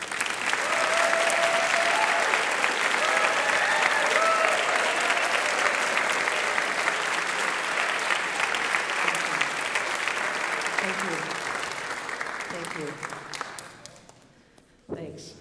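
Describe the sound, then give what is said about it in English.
Sustained audience applause, a dense, steady wash of clapping that stays loud for about thirteen seconds before tapering off, with faint voices mixed into the crowd noise, thanking worship volunteers such as musicians, singers and prayer servants who stand up. “if you've done sound, if you've done drama, dance, visual arts, if you've been a prayer servant, if you've been a musician or a singer, or maybe the associate chaplain for worship, would you please stand and let us thank you with our applause?”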